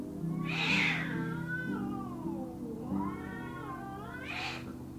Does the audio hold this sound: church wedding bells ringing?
no